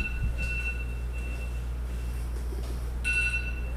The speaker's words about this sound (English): Wow, there's my alarm.